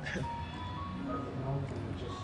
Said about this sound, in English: The jazz in the background is a nice touch.